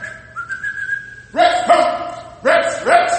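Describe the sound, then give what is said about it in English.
A sustained whistle gives way to a big dog barking, several loud, harsh barks in two quick bursts with a brief pause between them. “But sooner or later, that big dog will come running around that corner.”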